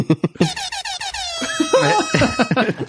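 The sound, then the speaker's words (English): A harsh, buzzy buzzer tone blares for about a second, its rich harmonics sustained and steady, before voices start talking over the fading sound. “Hit the buzzer.”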